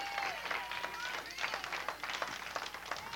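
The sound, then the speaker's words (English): A church audience claps hands together in praise of God, a dense, continuous burst of applause lasting a few seconds, with some cheering voices mixed into the steady patter. “And give God a hand clap of praise.”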